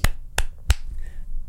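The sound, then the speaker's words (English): A few sharp, evenly spaced claps ring out one after another in a steady slow rhythm, fairly loud, with no one talking. “Let's just slow clap it out, people.”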